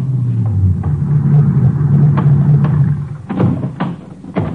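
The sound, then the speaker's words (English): A ranger car engine rumbles low and steady for a few seconds as it pulls into a grove near an auto court outside Pecos at nightfall, then goes quiet, followed by several sharp clunks like doors or gear being handled. “Barely got him unloaded when another ranger car pulled in.”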